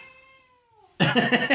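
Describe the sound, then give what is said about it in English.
A cat watching a bird outside lets out a drawn-out, gradually falling meow, then a sudden loud burst of harsh, crackly noise cuts in and continues to the end. No one speaks. “Oh, my cat's really getting into watching that bird outside.”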